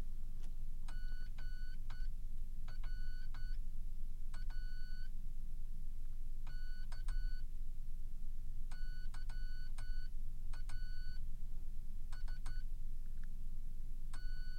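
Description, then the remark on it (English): Morse code keyed out as clear, high-pitched beeps, short and longer tones grouped into irregular bursts with pauses between, over a constant low rumbling hum. No one speaks. “So how would you say that your fist comes across when you're typing on the Morse code machine?”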